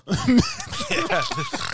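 Loud, wet, throaty breathing right into a microphone, a continuous run of raspy, gurgling huffs with voiced, cough-like catches, lasting under two seconds with no words spoken.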